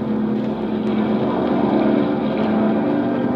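A seaplane on pontoons takes off across the water, gathering speed with waves slapping at the pontoons; its propeller engine roars in a steady, low droning hum, with a rushing wash of noise holding at a constant, loud level throughout.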